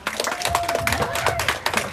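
A group of people at a religious teaching session clapping their hands for a good question, a dense, uneven burst of sharp claps lasting a couple of seconds, with a faint steady tone and a murmur of voices underneath.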